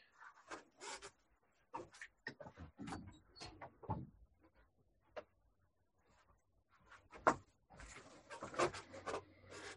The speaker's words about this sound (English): And let me just open the door of my studio. Hold on.